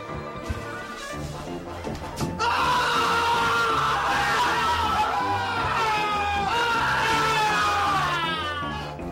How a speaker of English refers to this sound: They show that big scream, and they kind of keep going and going, and then they just kind of burst and they out just laughing.